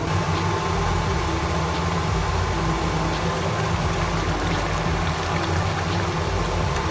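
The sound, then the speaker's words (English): A steady rumbling hiss of about a cup of water boiling in a pot for couscous, with faint bubbling pops scattered throughout and no one speaking. “We'll just wait for the water to get boiled.”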